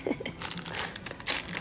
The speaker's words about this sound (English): So, for you ASMR people, you will love this. There's your pens dropping.